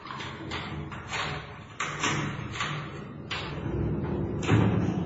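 A heavy steel prison cell door clanks and rattles as a policeman unlocks it and pulls it open, with several sharp knocks and scrapes over a low rumbling background.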